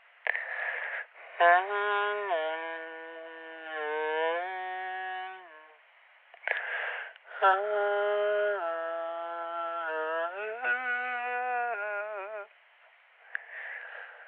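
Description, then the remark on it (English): A person hums a slow melody up close, holding steady notes that step up and down, in two long phrases separated by soft breathy pauses, with no other sounds around. “And I started humming that song from earlier as I propped myself up against the pod.”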